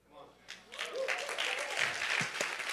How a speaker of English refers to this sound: Hand clap for her.